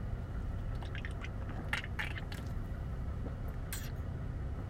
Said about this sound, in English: Let me drink some Bang. This episode was brought to you by Bang Energy. Today I'm drinking Purple Haze. Purple Haze Bang Brain and Body Fuel Purple Haze. Oh, yeah. Let's take a sip.